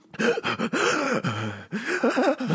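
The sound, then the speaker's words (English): Heavy, ragged breathing with voiced gasps and strained groans, coming in uneven bursts for a couple of seconds, fairly loud with no speech. “You gotta steady your breathing, kid. Steady your breathing.”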